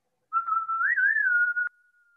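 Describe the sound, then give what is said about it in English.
A person whistles a short, sliding Western-style melody, a single clear tone rising and falling for about a second and a half, fairly loud, with no talking. “Let me see if I can wet my whistle.”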